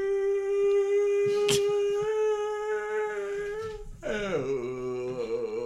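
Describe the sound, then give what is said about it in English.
A person imitates a whale call with a long, steady, drawn-out moan held for several seconds, then breaks into a wavering, warbling tone that rises and falls. “A person that talks like a whale.”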